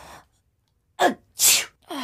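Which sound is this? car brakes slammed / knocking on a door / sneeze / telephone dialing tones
sneeze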